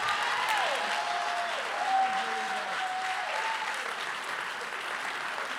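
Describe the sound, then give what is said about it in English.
A crowd at a church service applauds steadily throughout, a dense wash of many hands clapping at once, with faint sustained tones and a few voices rising briefly underneath. “Clap your hands if you have breath.”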